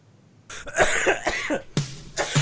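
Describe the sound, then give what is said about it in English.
A loud fit of coughing: a burst of harsh coughs in quick succession, then two more sharp coughs after a brief pause, with no talking. “Okay, let's draw some small sample stats so I can cough.”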